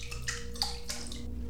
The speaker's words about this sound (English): So now we're all stood in this tiny mouldy bathroom, crowded round the toilet, lid fully closed, and a gentle splashing sound coming from inside.